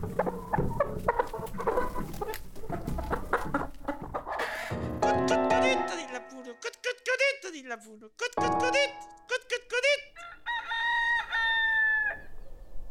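Chickens cluck busily, then roosters let out several loud, drawn-out crows in succession, one after another, over a restless farmyard background.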